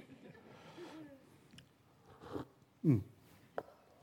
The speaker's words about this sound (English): We should cue the mute when I sip, because that was a gross slurp right there.